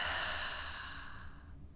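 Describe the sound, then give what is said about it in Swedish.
A single long, soft exhale through the mouth during a breathing meditation, a breathy airy rush that gradually fades over nearly two seconds, quiet with no talking. “Och släpper ut genom munnen.”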